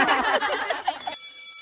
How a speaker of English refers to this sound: Well, that's the bell.